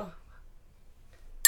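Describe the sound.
A single bright, ringing clink of wine glasses touching in a toast, loud, arriving at the very end after a quiet pause and a brief snatch of voice at the start.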